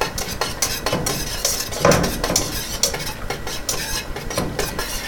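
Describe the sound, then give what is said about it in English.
A frothy mixture is stirred in a pan, giving a steady bubbly, fizzing hiss broken by repeated scraping strokes and a few light clinks of the utensil. No one speaks. “I think you can kind of hear the frothiness.”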